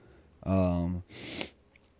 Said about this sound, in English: Now you can hear I got the sniffle thing still. Man, I can't figure out what it is with my allergies.